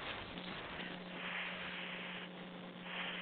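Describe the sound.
Several people hiss together like a snake in place of saying a film's title, a steady, breathy hiss that fills about three seconds with slight swells, over a faint constant electrical hum.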